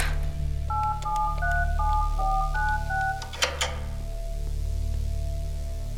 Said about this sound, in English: Oh, he went the other way, but that code sounded like a phone's touch tone.